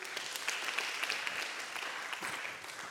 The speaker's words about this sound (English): If you receive that, why don't you clap your hands for God's word?